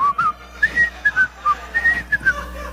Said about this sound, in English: I put my hands in my pocket and started whistling, you know, the theme to Andy Griffith